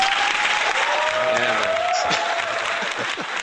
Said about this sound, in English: Can I get some applause? Yes, but not... Not, I'm going to use a different applause this time. It's going to be like three people just going.